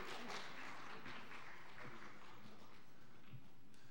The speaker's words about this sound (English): Applause for our kids and our leaders. Round of applause. Round of applause.